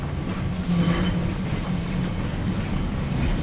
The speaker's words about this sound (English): The sound of the number 28 tram, a very famous tram in Lisbon that lots of tourists take. Everybody recommends that you jump on it and have a chance to kind of whirl around the city and see some of the really cool little suburbs.